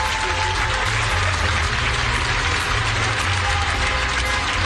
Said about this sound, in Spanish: Es decir, que España entera está aplaudiendo a nuestro personal sanitario.